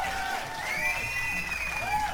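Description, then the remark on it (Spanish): A steady wash of applause for Club Nintendo from a crowd, with cheering and rising, falling whistle-like whoops riding over it, holding at an even loudness for about two seconds. “Y un aplauso a Club Nintendo, que en paz descanse ahora sí.”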